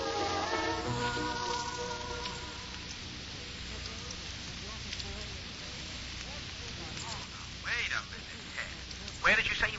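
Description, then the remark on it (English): A telephone is dialed from a church against a steady hiss: a brief tonal hum at the start, then a stretch of soft mechanical clicking and whirring, with a few sharper clacks near the end. “I want to make a phone call.”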